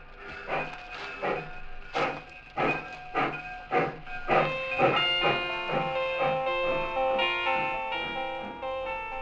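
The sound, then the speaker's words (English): A steam train pulls away, heard from a railway embankment, with a steady run of loud, hissing chuffs, then a long, bright whistle rises over the engine and keeps sounding to the end. “I stood there on the embankment as the train pulled away.”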